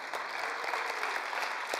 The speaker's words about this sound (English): And I don't know about you, but I do believe that God will heal our land. A clap goes right there.